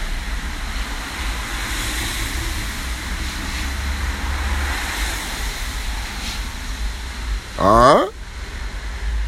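A steady roar of traffic fills the background, then one car swoops past near the end, its pitch sliding down sharply as it whizzes by.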